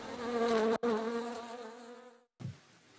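A dense swarm of bees drones loudly and close, a wavering buzz that cuts out for an instant, tapers away, then swells back briefly. No voices.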